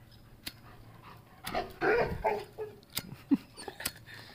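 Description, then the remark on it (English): A dog, excited at hearing other dogs, whimpers and yips in a rapid, uneven series of high whines and short bursts, with a few sharp clicks and no talking. “He's hearing other dogs and stuff, I think. So he's just really excited.”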